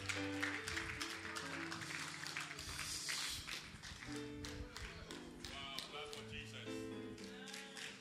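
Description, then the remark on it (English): An audience claps steadily for the Lord Jesus near the close of a service, a dense wash of hands that keeps up for several seconds over sustained keyboard or organ music playing chords underneath. “Clap for the Lord Jesus.”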